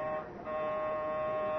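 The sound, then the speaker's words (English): After a brief moment of low hiss, an apartment doorbell buzzer sounds as its button is pushed: a harsh, steady electric drone with a bright harmonic tone that holds unbroken at an even loudness to the end. No one speaks. “When I got to the apartment, I waited a moment and then pushed the button.”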